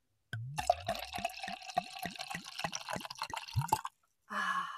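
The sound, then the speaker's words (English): Wine glugs out of a freshly opened bottle into a glass in a quick, steady series of gurgling pulses for about three seconds, followed by a short pause and a brief rustling sound. “I just cracked open my wine. I was going to do a little ASMR here.”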